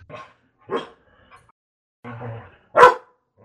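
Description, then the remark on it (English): A dog barks several times in short, separated bursts, with one loud, sharp bark near the end and a softer, whiny vocalization in between. “Why is it horning up your dog?”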